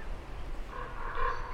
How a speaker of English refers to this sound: You become very aware of all the different types of gulls that surround us, black-back gulls and black-headed gulls, common gulls, which are calling and soaring around Temple Bar day and night.